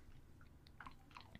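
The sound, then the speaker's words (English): Someone mimics chewing bacon inside a helmet with their mouth: a short run of quiet, irregular wet smacks and crunchy clicks, with no talking. “He's just chewing on it, and just constantly inside the helmet.”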